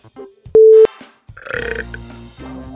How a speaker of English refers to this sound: Now I'm burping all the time.